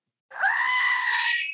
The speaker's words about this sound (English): Oh my God. That's the hilly goat scream. It's a Badwater, a little Badwater trinket that I have from our team from Badwater.